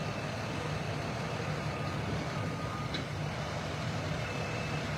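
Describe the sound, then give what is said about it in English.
A truck engine rumbles steadily for the whole stretch, with a faint high-pitched reversing beep sitting above the low, continuous drone. Nobody speaks. “It is a very cool looking truck.”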